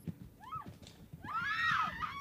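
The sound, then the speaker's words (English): A horse whinnies briefly as it races off into the night at a frightful pace, then a young woman lets out a long, shrill scream of terror that rises and falls over a low rumbling background, with no talking. “The horse raced into the black night, and the young lady screamed with terror.”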